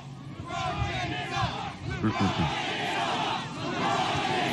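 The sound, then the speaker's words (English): A large rally crowd roars and chants together in a loud, sustained wave of voices, the rhythmic shouting swelling and continuing steadily throughout, dense. “What a crowd.”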